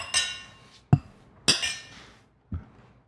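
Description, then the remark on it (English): Beer glasses of Block 15 Brewing Fresh Flow IPA clink together in a toast, four separate bright taps with short ringing tails, spaced unevenly over a few seconds, with no one talking. “All right, let's give it a taste. Cheers. Cheers. Cheers.”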